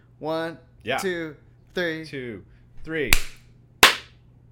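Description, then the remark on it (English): Voices count aloud "1, 2, 3" in rhythm, then sharp hand claps land on the count. The final two claps are loud and slightly out of sync, and a fainter clap blends into the speech early on. “We're going to go 1, 2, 3, clap.”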